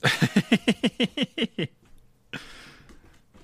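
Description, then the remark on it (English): A quick run of about ten high, whiny yelps from dogs, evenly spaced, followed by a burst of shuffling, rustling movement. “I can hear his dogs now.”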